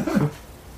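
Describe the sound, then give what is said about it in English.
A man briefly clears his throat, a short, gruff rumble lasting a fraction of a second before trailing off into quiet room noise. “It's like you can hear his him clear his throat”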